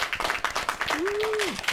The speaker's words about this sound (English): Why aren't they applauding? They want to ensure they do not interrupt you, Your Majesty. They're peasants. They have one job. How can they not know when to applaud? Applaud now, everyone.